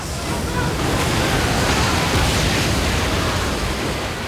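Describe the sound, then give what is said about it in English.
A dense, steady roar of rushing water as the split walls of the Red Sea come crashing down on Egyptian soldiers and horses, filling the whole clip, broad and loud like crashing surf, with no distinct individual wave breaks and no voices. “The walls of water came barreling down, crushing the Egyptian soldiers and horses with incredible force.”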